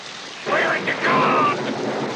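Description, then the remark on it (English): A steady, dense, loud roar of heavy rain fills the whole recording, with a strained voice calling out faintly over the downpour around the middle. “Yelling over the rain.”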